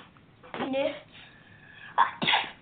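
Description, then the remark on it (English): A person sneezes: a sharp inhaled buildup and burst near the start, then a second quick sneeze-like burst toward the end, with quiet background between. “Bless you.”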